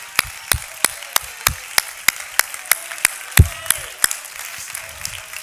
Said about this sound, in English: Somebody give the Lord a hand clap of praise right now.